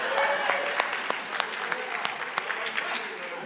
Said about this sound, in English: We give the man a round of applause.